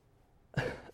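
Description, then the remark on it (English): A single short, harsh cough bursts out after a moment of quiet, then fades quickly back to near silence; the cough is brought on by weed whacking. “Try not to cough because of the weed whacking.”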